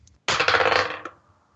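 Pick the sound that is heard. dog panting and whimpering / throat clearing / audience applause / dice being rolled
dice being rolled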